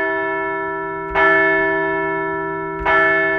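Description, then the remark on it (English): A large bell is struck twice, rung to mark the Phillies' strong finish to an early-season homestand, each clang blooming into a rich, sustained ringing tone that hangs between strikes. Loud, with no voices. “So let's ring the bell for a strong finish to an early season homestand.”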